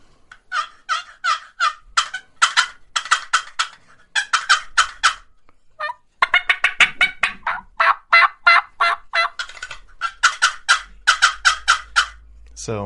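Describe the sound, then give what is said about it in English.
A turkey gobble imitated on a wooden box call: loud, rapid bursts of raspy, rattling notes in quick runs, with two alternating tones, briefly pausing near the middle before resuming. “You can do with the box.”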